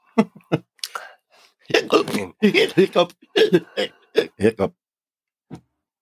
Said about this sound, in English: Hiccup. Are you okay now? I think I'm good.